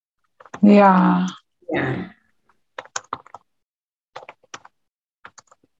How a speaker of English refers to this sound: Sorry, so if you guys are hearing the back end of typing, it's just that I take notes.